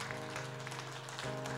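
An audience claps together as an offering of praise to the Lord, a dense, steady wash of applause, with sustained musical tones humming underneath throughout.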